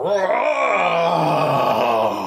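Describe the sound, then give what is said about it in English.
A person voices a creature's long, low, growling roar echoing through a cave, sustained and loud for about two seconds with a rough, rumbling tone that slowly trails off. “As he stares at Arnis now, lets out another roar.”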